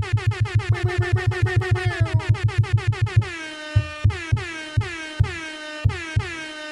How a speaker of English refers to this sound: Can I give him the air horn to this motherfucker?